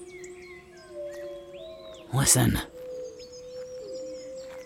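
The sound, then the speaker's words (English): Long, drawn-out wolf howls hold steady and slowly glide in pitch, faint, with higher whistling calls above them. A voice briefly speaks one word partway through. “that's just wolves, silly. Can't you understand them? They're calling for us.”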